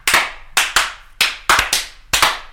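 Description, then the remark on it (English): Sharp, loud hand claps ring out in an uneven series of about eight, each a bright percussive crack with a short decay, some landing in quick pairs. No one speaks. “My wife has a superpower of clapping really loud.”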